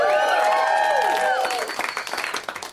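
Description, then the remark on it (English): A comedy show audience in Los Angeles applauds loudly to welcome two comics from New York while several voices let out sustained whoops and cheers that slide downward, then the cheering drops away and the clapping thins into scattered, uneven claps. “And we're going to tell them with our applause that their city is terrible.”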